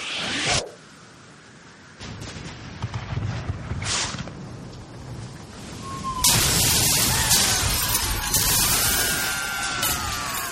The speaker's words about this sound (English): Quickly fire a barrage into their port side while they reload. Aye, aye, sir. Fire the cannons!